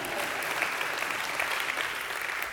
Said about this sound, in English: Yeah, y'all can give a round of applause for that.